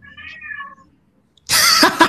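A cat named Gillo gives a short, tonal meow, then after a brief silence lets out a louder, harsher, more raspy cry. No one speaks.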